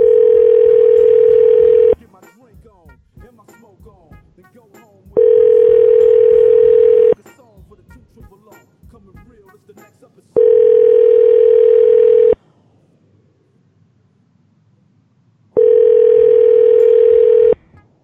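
An outgoing call rings on the line: four steady, loud ringback tones about two seconds each, separated by pauses, with someone muttering quietly in the gaps.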